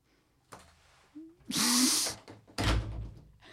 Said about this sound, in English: That was me slamming a door in disgust. You can see me do it.